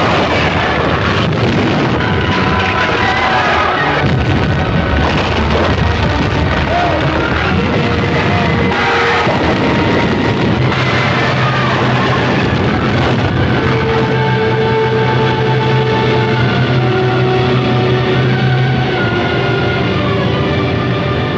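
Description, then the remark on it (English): The Temple of Dagon collapses in crashing ruins, brought down by Samson in Cecil B. DeMille's film Samson and Delilah: a loud, continuous roar of rumbling, smashing debris and deep booms that never lets up, with sustained tones emerging under the din in the second half. “Samson using his incredible strength to bring down the Temple of Dagon in crashing ruins.”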